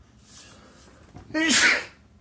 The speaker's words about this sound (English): Excuse me, I'm sorry, I just sneezed. Sorry.